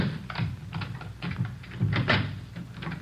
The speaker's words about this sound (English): Oh, all right. Let me get the door open.